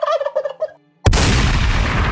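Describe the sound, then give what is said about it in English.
A wild turkey gives a quick, rattling gobble of several warbling notes, then after a short silence a loud, sudden blast erupts and roars on steadily, drowning everything out. “Finally, go hunt some wild turkeys.”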